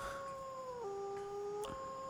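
wolf howling

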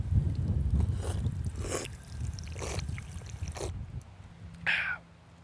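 drinking fountain water running

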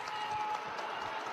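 fans applauding

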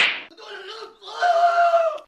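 slap

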